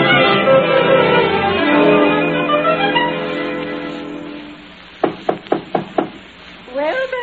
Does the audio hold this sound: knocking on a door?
yes